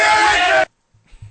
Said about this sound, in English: the other guys start screaming, and you can't hear him, the rest of Heenan's promo